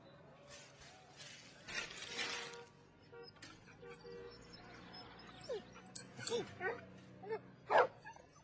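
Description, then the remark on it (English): A dog barks and whimpers in short, high-pitched bursts, growing louder toward the end, with a few yips over a low background hum and some indistinct talking early on. “Look at the cute dog.”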